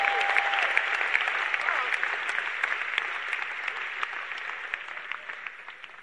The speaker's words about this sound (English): Give the Lord a wonderful clap offering if you are happy.